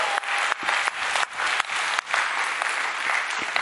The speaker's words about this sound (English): Thank you so much. That was really great. We appreciate all the help. I just think you all deserve a big round of applause for making that to happen.